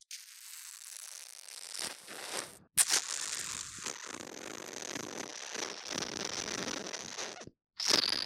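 Someone swishes and gargles Fanta through their teeth, a steady wet, hissing sputter with a brief break near the start and another near the end. It's fairly loud and nobody speaks.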